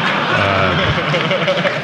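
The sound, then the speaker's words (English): An audience applauds in a steady, dense wash of clapping that holds at an even level throughout, with a few voices faintly mixed in beneath the noise. “oh, you don't have to applaud, for Christ's sakes.”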